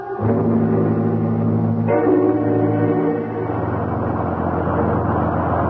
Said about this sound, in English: We've been on this godforsaken bus for almost 20 minutes. It keeps on going without even a driver.